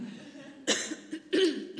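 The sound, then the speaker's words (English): A person with allergies coughs a few times, with short raspy bursts and a throat-clearing rasp between them, with no speech. “I hope you feel at home now that I'm coughing and spitting.”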